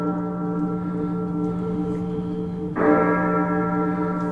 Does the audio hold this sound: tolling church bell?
yes